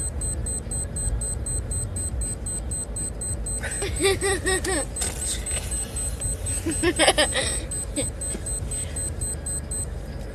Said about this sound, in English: What's that ticking sound? Sounds like a watch. Or a bomb.